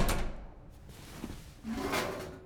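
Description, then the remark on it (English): A trash chute door down an apartment hallway swings open with a clunk as a suit is stuffed into the chute, then bangs shut a couple of seconds later, two moderately loud impacts with a low rumbling in between and no voices. “He opened the door and walked down the hall and stuffed the suit into the trash chute.”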